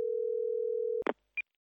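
A steady telephone dial tone hums for about a second, then cuts off with a sharp click and clatter, followed by a single short, high-pitched beep, with no talking.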